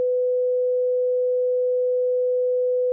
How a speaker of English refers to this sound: I'm going to look it up, and if you just heard a beep, a la mail fraud episode, you'll know what that we just had a great idea that is illegal.